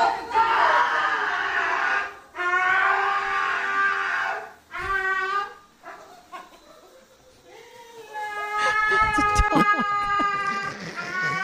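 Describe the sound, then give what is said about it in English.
A dog being groomed whines and cries in long, wavering, high-pitched wails, then in shorter broken yelps, with a buzzing, clicking noise running under the final whimpers. “It's a dog being groomed for those just listening.”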